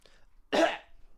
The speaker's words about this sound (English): That cough was fake.